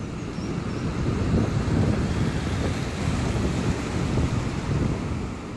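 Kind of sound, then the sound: nature, ocean waves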